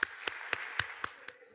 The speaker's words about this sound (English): And we are so incredibly, incredibly fortunate to have Metropolitan Ballet join us here today. So I'd ask you to welcome with a warm round of applause as they offer us their first number.